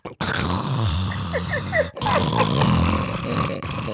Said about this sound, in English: I said, yo, you should be ashamed of yourself how you were snoring. Excuse me? I played it for you. This ain't no new news.